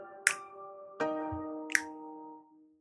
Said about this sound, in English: It's not hand claps. It's snaps. Finger snaps.